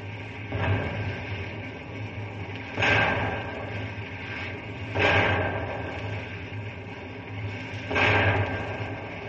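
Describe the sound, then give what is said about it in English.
Four dynamite blasts, set off with lit fuses to fell trees across railroad tracks for a fire lane, go off one after another at uneven intervals, each a broad, rumbling burst that fades quickly, over a steady low hum with no voices. “Dynamite blow any time now!”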